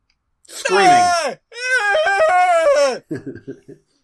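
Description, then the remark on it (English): Neighbor children, older kids, screaming outside in the yard right outside a door: two long, loud, high-pitched screaming wails, wavering and sliding downward, followed by a burst of short choppy yelps that quickly fade. “And now those neighbor kids, they're outside, right outside my door, just screaming, just in the yard.”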